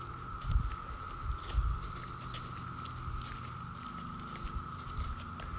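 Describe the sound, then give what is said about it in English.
A chorus of 17-year cicadas, which show up every 17 years, drones as a steady, unbroken high-pitched hum with a static-like quality, while soft, irregular low thumps and patters sound beneath it. No one speaks. “That sound, which hopefully the background music isn't covering over, so I may or may not add background music this time, is the sound of the 17-year cicada.”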